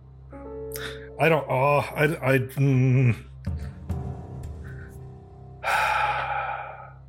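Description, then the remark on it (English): Heavy, nervous breathing from a man: a run of shaky voiced gasps and strained exhales, a brief lull, then a long, loud, breathy sigh. No words are spoken. “Like he's breathing heavy and everything. He's very nervous right now.”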